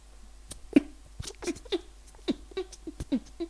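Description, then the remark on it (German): A voice imitates farting with the mouth as the outro of a show recorded live at an improv theater: a run of eight or so short, sputtering low bursts, each a brief buzzy pop, spread unevenly over a few seconds with no talking. “Ich möchte, dass du jetzt unser Outro kritisch furzt.”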